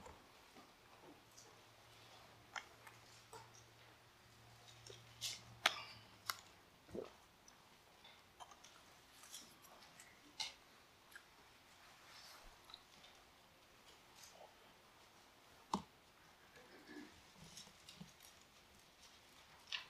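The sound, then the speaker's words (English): Scattered paper rustles and crisp page flips from many people at once as a church audience turns their Bibles to Philippians chapter 3, soft and overlapping, with no one speaking. “I'd like to hear the pages turning.”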